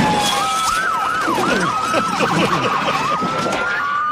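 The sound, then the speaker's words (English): A police car siren yelps in rapid, rising-and-falling sweeps, loud, as the police car drives over signs through what's left of a protest barricade, over a dense wash of street and crowd noise with faint voices in the background. “So listen, we have live audio of the cop car going through what's left of the barricade.”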